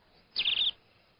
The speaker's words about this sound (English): Cheep, cheep. It's like a bird sanctuary in here.